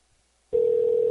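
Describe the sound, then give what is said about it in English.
A telephone ringing tone on an outgoing call to the direct number of the Mandalay Bay poker room sounds through the line after a brief silence, a steady, fairly loud electronic hum that holds without a break to the end. “I'm going to try this direct poker room phone number.”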